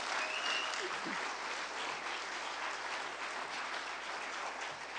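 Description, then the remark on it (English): Steady audience applause fills the whole stretch, a dense, even wash of many hands clapping at a constant level with no talking over it, welcoming guests as they come up to tell their story. “Let's give them a hand, and we're going to hear their story today.”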